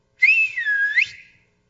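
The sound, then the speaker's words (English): A single loud, clear human whistle lasting about a second, sliding down then swooping back up in pitch, a call summoning children from another part of the house to a family meeting, heard alone with no talking. “Hey, will you whistle for the kids?”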